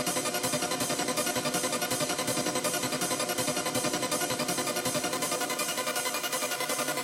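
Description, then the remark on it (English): A clean, undistorted audio wave plays on its own as a steady, continuous buzzy tone at constant loudness, with a fast, even pulsing flutter and no voices. “So here it is, clean.”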